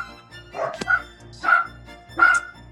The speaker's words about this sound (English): Sorry, the dogs are barking in the background. They're the ones that have the two dachshunds named Oscar and Mike.